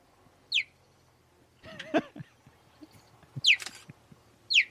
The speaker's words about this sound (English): No, it's a cheetah. That's the sound a cheetah makes. Wait, they chirp?